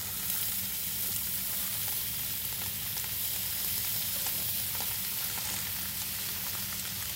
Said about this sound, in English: we're just gonna go over to a hot pan, nice flat surface, medium to high heat, and you're just gonna press the sunchokes onto the pan. You should hear a nice little sizzle sear as when you put them down. This is the sound you're really looking for.